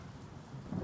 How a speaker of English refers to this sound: We were headed south through Davis Strait when we hit some rough weather. Captain seemed to think it was a little early in the year for a storm, so he chose to sail us straight through it.